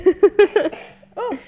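A young girl coughs four times in a quick, even burst, fairly loud, then makes a short voiced sound after a brief pause.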